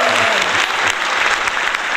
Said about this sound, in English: You get the hand, only you get hand claps.